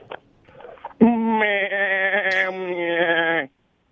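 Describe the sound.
A phone-in caller to a show imitates a goat with one long, loud, wavering bleat lasting a few seconds. A brief faint shuffle comes before it, and it ends abruptly.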